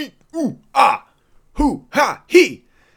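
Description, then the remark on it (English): Someone hacks and clears their throat in a rapid series of six rough, voiced grunts, fairly loud, like trying to bring up phlegm. “Just cough up the whiskey-soaked hairball that I've always got at the back of my throat.”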